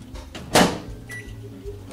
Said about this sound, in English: We're also going to do a few steamed vegetables. Looks like, what's in there? Broccoli, carrots, some beans. Yep. And we're going to punch holes in the bag. You don't stab yourself. In the microwave for 5 minutes.